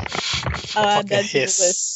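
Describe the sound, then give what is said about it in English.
A voice imitates a snake, sliding from hissy, strained vocal noises into a sustained, sharp hiss that trails off at the end, fairly loud. “Fucking hiss, man.”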